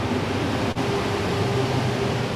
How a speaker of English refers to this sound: there's a truck going by, let's let that go by.